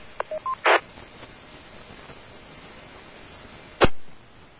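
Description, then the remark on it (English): A radio squelch breaks open as another station keys up, giving a brief burst of static and no voice, after a few short beeps, then a sharp click and fading hiss over a steady band-limited background noise. “and there was another station that broke squelch but no audio.”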